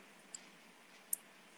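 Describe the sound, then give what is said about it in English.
Two isolated, crisp clicks on a computer keyboard, as someone types into a chat, about three-quarters of a second apart, sound faintly against a steady background hiss with no one talking. “Oh, I spelled it wrong. 1 second. Boom. Lion Fights. My keyboard's all messed up.”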